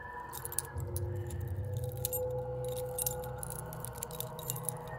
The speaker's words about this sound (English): Let me check. He shuffled through his keys one by one.